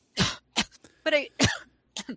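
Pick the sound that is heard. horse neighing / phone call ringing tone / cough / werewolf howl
cough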